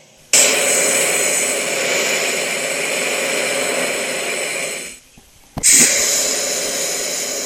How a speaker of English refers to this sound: Hey, like my flamethrower. It's deep, fried, Texas-style time.